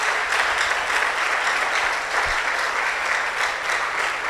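A church audience claps their hands for Jesus and for those who surrendered their lives to Him, in a dense, sustained burst of applause that stays loud and steady for the whole stretch, with no voices standing out.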